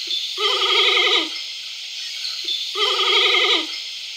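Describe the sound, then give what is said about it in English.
A giant panda bleats twice, each call a wavering, nasal, goat-like cry lasting about a second and preceded by a short soft chirp, with a pause between them. “Second of all, here is what an actual panda, not named Danica Wolf, sounds like when it is bleeding.”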